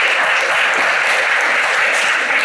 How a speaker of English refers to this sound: Yeah, you should clap for that.